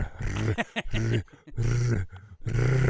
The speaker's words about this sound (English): Noisy fucking cat.